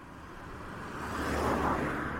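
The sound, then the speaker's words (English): A single car passes, its broad tire and engine rumble swelling to a peak just past the middle before easing slightly. No voices, only the steady wash of road noise. “A car passes.”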